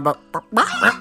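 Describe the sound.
A voice imitates a rooster crowing up close: two short honking notes followed by a longer, strained, rising call, loud and alone, with no other sounds.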